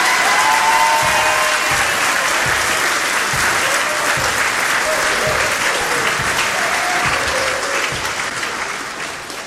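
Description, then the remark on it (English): Sustained applause from a large audience at an ABS varsity basketball game for the graduating seniors of the basketball team, three varsity girls and three varsity boys, steady and loud for most of the stretch, with scattered cheers rising above the clapping before it tapers off slightly at the end. “One more applause for our graduating seniors.”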